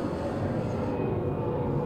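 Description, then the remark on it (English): A loud, steady roar of an airplane passing low overhead above a studio, a dense rumbling wash of noise that holds at an even level throughout, with no talking. “Is there a plane that's going to crash into the studio, or that is really close?”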